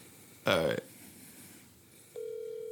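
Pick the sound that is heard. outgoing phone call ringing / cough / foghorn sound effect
outgoing phone call ringing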